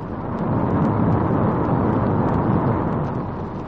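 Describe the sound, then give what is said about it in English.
Niagara Falls roars in a loud, continuous wash of rumbling, crashing water, heard from rock-cut lookout portals behind the falls, steady throughout with no voices. “All about you are countless tons of wild, crashing water, creating an inferno that sends up vast clouds of mist.”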